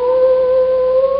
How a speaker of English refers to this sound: Uh-oh. Is that me? That's when the wolf howls. That means it's it. It's time to go.